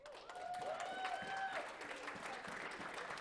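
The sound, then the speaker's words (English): A crowd applauds people who got out of debt, with steady, dense clapping throughout, and a few high, sustained whistle-like or cheering tones rise over it in the first second and a half. “Yeah, it's great to clap for them now, but they had to skimp and to save and to be frugal for 3 years to get out of that debt.”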